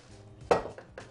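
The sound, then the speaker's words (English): A metal cookie sheet clatters against a stovetop as it is brought over and the heat is turned off: one loud, bright clang followed by two softer metallic knocks, with no one speaking. “I'm going to move this over here, bring my cookie sheet over, and turn off my heat.”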